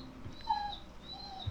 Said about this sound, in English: That would be the crying dog. Why is he crying? Anyway. We can cut that out, right? We're going to cut the crying dog out.